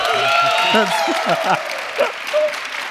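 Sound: audience clapping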